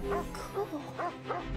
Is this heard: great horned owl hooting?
no